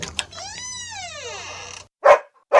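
A dog lets out a long, drawn-out whining howl that rises and falls, then barks twice, short and loud. No one speaks.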